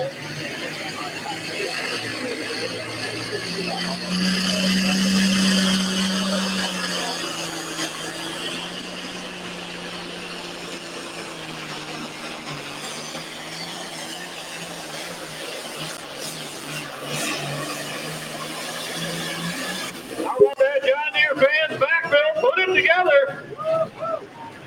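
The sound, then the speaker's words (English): A loud pro stock diesel pulling truck engine roars continuously during a test pull at a truck pulling competition, revving up and holding a heavy, droning pitch before easing off; near the end an announcer talks over the rumbling engine. “Test puller in the pro stock diesel truck category.”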